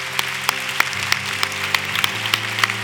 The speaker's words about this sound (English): So if you're standing up, come on down to the altar. Let's give them a hand as they come on down.